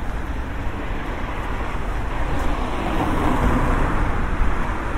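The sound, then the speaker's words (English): A steady wash of road traffic rumbles along a wide city street, broad and continuous, swelling slightly as vehicles pass, with no voices over it. “So traffic to my right, you can hear.”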